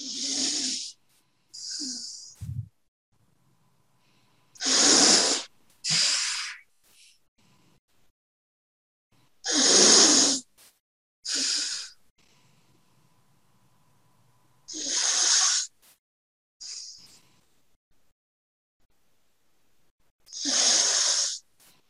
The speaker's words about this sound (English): Now you're going to close your left nostril and breathe in and out from your right.